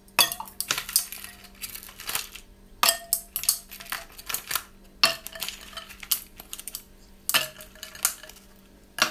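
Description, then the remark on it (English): Six ice cubes clink and rattle into a glass of tea one after another, several sharp, bright clattering bursts at irregular intervals, fairly loud, with no talking. “Yes, let's put some ice cubes in.”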